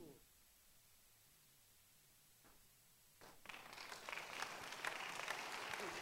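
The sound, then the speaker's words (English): An audience breaks into applause: after a few seconds of quiet hum, a swell of many hands clapping rises and keeps going as a dense, steady patter. “Listen, I want to ask you a question because of the way you are clapping.”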